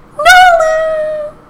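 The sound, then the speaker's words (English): A single drawn-out, high-pitched dog whimper, rising briefly then sliding into a long thin whine that fades out after about a second, fairly loud with no talking. “That is such a cute dog.”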